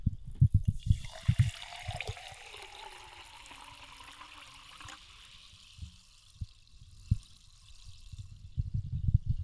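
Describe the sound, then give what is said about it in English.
Liquid is poured into a glass in a steady stream for about four seconds as the first pour of a drink, its pitch rising as the glass fills, with soft handling thumps before and after. “Pretty decent first pour.”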